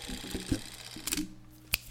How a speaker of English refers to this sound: And it sounds like the old, good old shutter. Yeah. That is so cool. So that's the motor moving the film through at... 24 frames a second, because old film cameras would shoot 24 frames a second.